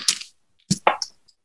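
Dice clatter across a hard tabletop in a few quick bursts of sharp clicks and rattles, ending with one last faint tick, rolled for a persuasion check in a tabletop game. No voices.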